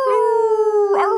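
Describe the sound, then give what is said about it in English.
A person imitates a dog with one long, steady howl held loud, broken near the end by a short, rough bark-like yelp. “build that wall, MAGA, roof, roof, roof, roof, roof, roof.”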